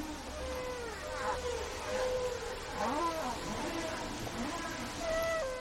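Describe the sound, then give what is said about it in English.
Humpback whale song: a continuous run of eerie, sliding moans and rising whoops, some low and some high and squeaky, echoing over a steady underwater hiss with no one talking. “Back in the 1970s, early acoustic biologists recorded humpback whale songs, and it turned into a record album that went multi-platinum.”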